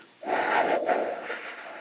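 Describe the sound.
A single long, forceful exhale of breath, fairly loud, with a broad hissing rush that starts abruptly and fades slightly over about a second and a half.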